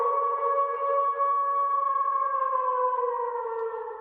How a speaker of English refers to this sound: Every segment needs to have a drop.